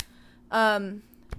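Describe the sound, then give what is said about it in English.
A single short, loud burp rings out, a voiced, tonal belch lasting about half a second before fading into quiet. “Oh my gosh, what a burp.”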